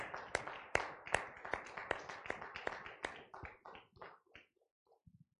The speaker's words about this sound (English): Praise the Lord, everyone. Let's give the Lord a hand clap tonight, all right?